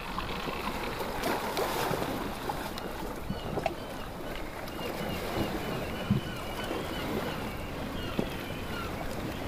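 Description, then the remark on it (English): A sailing boat moving through the sea, with water sloshing and splashing against the hull over a steady rush of wind, continuous, with no voices. “I haven't been sailing in such a long time. The mist of the sea spraying my face brings a sense of calm my soul has been yearning for.”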